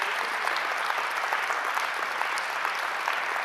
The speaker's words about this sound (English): And they deserve a huge round of applause.